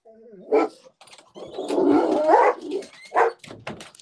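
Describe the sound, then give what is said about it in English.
Dogs barking in short bursts after someone shut a car door outside: a sharp bark, then a longer stretch of overlapping rough, growly barking, followed by a couple more yaps. Loud and alone, with no talking. “Someone shut a car door outside, so naturally the world is in. The brigade is on it.”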